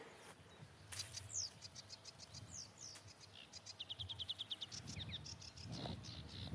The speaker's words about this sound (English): There's a sedge warbler. Much faster, urgent call than the slightly more languid reed warbler.